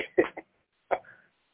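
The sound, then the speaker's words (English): A quick cluster of harsh coughs, then after a short pause a single rough throat-clearing cough trailing into a raspy rumble. No talking. “I got me going to cough.”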